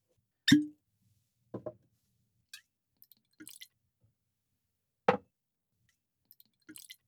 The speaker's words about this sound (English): So it'll be the Glenlivet 12 for us today. Okay. Shall I pour? Yes.